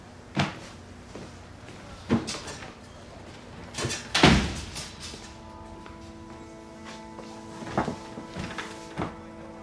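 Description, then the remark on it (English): A door shuts with a heavy thud amid several other knocks and bumps spread across the moment, the loudest impact near the middle, followed by a faint steady hum. “Close that door. Close that door.”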